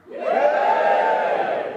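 An event audience erupts in a loud, sustained cheer, voting for the event to go ahead, many voices shouting and whooping together in a dense, steady roar that rises quickly and holds for under two seconds.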